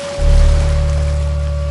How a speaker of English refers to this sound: Suddenly, the waves by the warehouse split apart to reveal a submarine previously hidden by the rolling waves of Westport Bay.